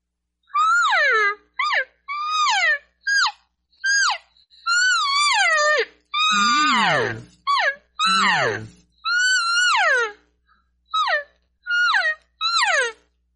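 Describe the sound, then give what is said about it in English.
About a dozen high, nasal mewing elk cow calls blown on a game call in a quick, irregular series, loud, a few stretched into longer wavering bleats with a raspy low edge. “Let's hear some cow calls out of that”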